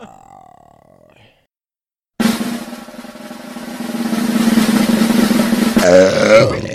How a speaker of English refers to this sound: Into like a mega burp. Yeah, like a mega burp, just like all at once, just like oh.